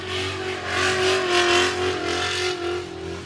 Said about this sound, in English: And as he was leaving, he said, no one's done a big burnout, so I'm going to do one for you. And he just did a 200-yard burnout rolling the whole way on the brakes.